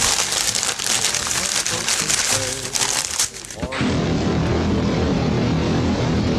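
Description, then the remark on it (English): The wrapping paper of a tagged Christmas present crinkles and rips loudly in quick, uneven bursts for a few seconds as it is opened, then the tearing stops and a steady, dense roar of sound takes over. “Oh, present here. It's got a little tag on it. Dear readers, Merry Christmas. Lots of love. Staggering Stories. Oh, thanks, guys. I'll open it.”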